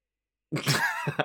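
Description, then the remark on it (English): After a moment of silence, a stifled sneeze bursts out as a muffled, breathy blast, followed by a couple of quick, snorting puffs. No one speaks. “Sneezing violently.”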